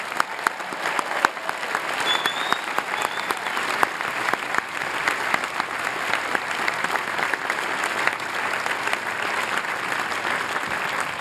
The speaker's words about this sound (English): Let's have a big round of applause for the class of 2014. They've earned it.